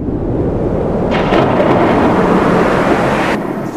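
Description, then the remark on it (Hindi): A loud, sustained thunder crash with a deep rumbling roar that swells and then cuts off sharply, heard alone with no voices. “जब उसने सर काट कर चढ़ा दिया और दसवीं बार भी अपना ही आखिरी सर काटने को उतारू था कि तभी बहुत तेज से रोशनी गूंजी थी।”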